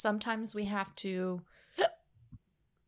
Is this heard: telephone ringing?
no